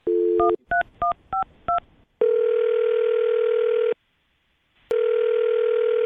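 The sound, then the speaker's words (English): A brief dial tone gives way to four quick keypad tones as a woman's phone number is dialed, then long steady ringback tones sound twice with a pause between, clear over a telephone line. “Well, I'm going to dial her phone number right now and see if we can figure out why she's not calling you back, okay?”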